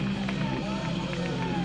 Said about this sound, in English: Running for home and getting there safely is Zmarzlak, now tying up the game for the Terps. The crowd is loving it.